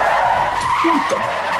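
A car's brakes screech in a loud, sustained skid lasting under two seconds, a bright tire squeal standing alone with no talking.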